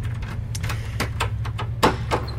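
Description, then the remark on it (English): A door being opened: a quick series of sharp clicks and rattles, with one louder clack near the end, over a steady low rumble and no talking. “Let me open the door and then I'll continue my walk with you.”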